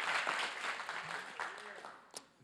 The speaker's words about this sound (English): If you believe that, give Him a clap of praise.